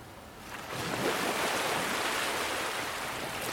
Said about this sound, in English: Allow the flow of the waves to lasso your heart into the rhythm of the ocean.